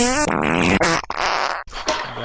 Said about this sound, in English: Now, listen to some fart noises.